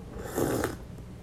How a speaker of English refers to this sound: and I'm going to sip my tea now.